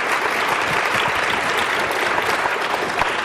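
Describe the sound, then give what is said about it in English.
An audience claps steadily and loudly for a few seconds, a dense, even wash of many hands with no voices standing out. The applause is for the day's readers. “I think we'll have another round of applause for our readers today.”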